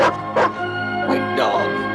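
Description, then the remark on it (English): An attack dog barks four times in sharp, loud bursts, two close together, a pause, then two more, over a steady humming background. “You got yourself an attack dog.”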